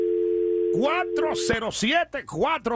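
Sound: telephone dial tone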